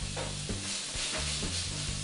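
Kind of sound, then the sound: food or drink, onions sizzling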